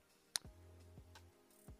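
A single short, high-pitched chirp of a fire alarm whose battery has gone out, heard once at 7 o'clock with darkness outside, against a quiet background with a few faint clicks and low thumps around it.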